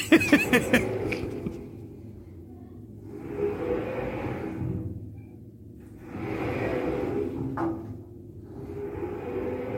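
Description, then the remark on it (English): A heavy empty washing machine is dragged across an office floor: a few clunks at the start, then three long, rising-and-falling grinding scrapes with a wheezing, groaning tone. No one speaks. “I'm just dragging an empty washing machine across the floor of the office here.”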